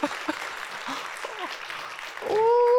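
A round of applause: dense, steady clapping from a group for a few seconds, joined near the end by a loud, sustained rising whistle-like tone.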